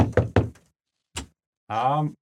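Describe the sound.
Three quick knocks on a door in rapid succession, followed by a pause and a single lighter tap, then a short voiced vocal sound.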